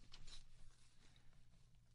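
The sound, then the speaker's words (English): Soft papery rustling of Bible pages being turned to the book of Matthew, with a brief crisp flutter at the start followed by quieter shuffling, faint, with no voices. “You can hear me turning the pages.”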